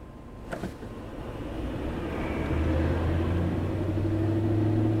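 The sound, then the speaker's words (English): Steady low rumble from inside a moving car in slow traffic on Business Highway 16, a continuous droning engine hum that grows slightly louder and deeper partway through, with a brief click near the start and no talking. “But at least traffic is moving. It's like normal traffic back up now.”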